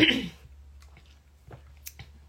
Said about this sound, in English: So I'd like you to start with, excuse me, let me take a sip here.